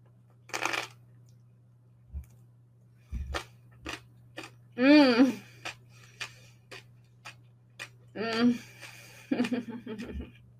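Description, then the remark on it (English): Crunchy chewing of a summer roll with kelp noodles, dunked in sauce: a string of sharp crackling bites spaced irregularly, with a few brief murmured vocal sounds between the crunches. “Look at it. It's so crunchy and perfect.”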